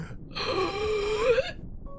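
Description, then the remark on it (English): A single sharp, drawn-in gasp from a man, fairly loud, breathy with a faint voiced edge, lasting about a second before cutting off into quiet. “Suddenly, you hear a gasp come out of him.”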